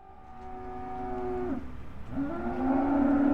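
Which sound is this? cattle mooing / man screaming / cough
cattle mooing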